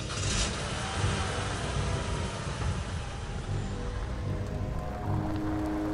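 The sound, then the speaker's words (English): Heavy rain from a bad thunderstorm pounds steadily on a car as it drives, a dense continuous wash of noise over a low rumbling hum, holding at the same loud level throughout with no voices. “The storm was worse than Lacey had thought, and she was afraid to keep driving.”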